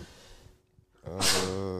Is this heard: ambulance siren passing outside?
no